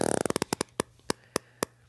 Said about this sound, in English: Dude, you got to fart, dude. Get the mic on your ass. Just remember, you got to talk into it.